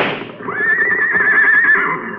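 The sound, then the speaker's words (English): A racehorse in a handicap race, just shot, whinnies loudly, a single long, wavering neigh that rises sharply and trembles for nearly two seconds before fading, with no talking over it. “Somebody shot my horse.”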